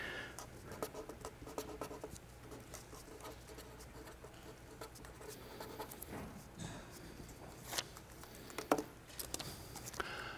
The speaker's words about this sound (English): Go home today and get a little sheet of paper. I got here a post-it note. And write down three words.